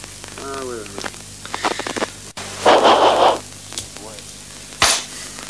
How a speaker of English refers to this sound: Well, what we could do is try yet another one. It's got white noise on it, too. It has.